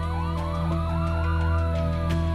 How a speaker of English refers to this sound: There was total chaos in the building. It was been a bombing. Sirens blowing, ambulances coming.